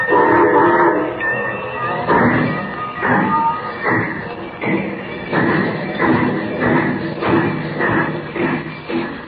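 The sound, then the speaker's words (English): A steam train bound for Metropolis, carrying a cargo of gold, pulls away, its loud, rhythmic chuffing repeating steadily with metallic clanks and a hissing, rumbling undertone. “Unknown to Superman, the train carrying the cargo of gold and Jimmy Olsen starts on its trip an hour earlier.”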